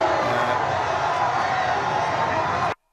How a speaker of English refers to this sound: I was kind of expecting to hear more of a splat sound, but I didn't. Just the same. You hear the crowd kind of go, ooh, as the guy falls.